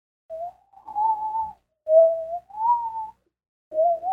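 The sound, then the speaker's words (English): Someone imitates with their voice a whistling breeze, cold air blowing from a doorway behind a nook in a basement: four soft, wavering whistled tones that rise and dip, fairly quiet, with brief pauses between them and no talking. “But this time, something drew me to the nook and I could hear this whistling type of sound, like a”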